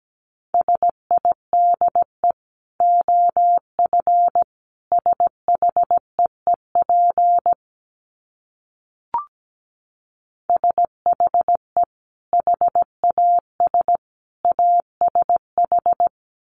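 Morse code sent at about 17 words per minute: a steady mid-pitched tone keyed into quick dots and dashes, grouped with short gaps, pausing briefly midway before resuming. No voices.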